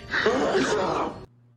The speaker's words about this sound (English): How epic is that sneeze? I pointed this out on the chat, but I am kind of hard of hearing, so I have to watch television with the captions on, and the captions actually say Klingon sneeze.